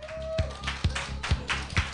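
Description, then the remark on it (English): Slow, steady clapping for a comic at a stand-up comedy show, with about four evenly spaced, sharp claps standing out over a low background murmur and hum; the clapping sounds sparse rather than a full burst of crowd applause. “everyone, keep clap”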